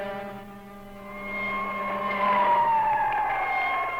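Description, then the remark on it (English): Loud, steady warning klaxons at Cape Canaveral blare in a sustained, harmonically rich drone, their pitch sliding downward partway through, with no voices present. “Warning klaxons at Cape Canaveral.”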